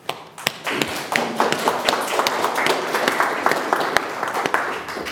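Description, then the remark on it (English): Steady applause from an audience in a room full of people, with many hands clapping at once and a few sharp claps standing out over the dense patter for several seconds. “We made the mistake of getting the applause while everybody was getting their phones out.”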